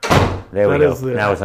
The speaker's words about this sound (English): I wanted to Foley the door closing so that, you know.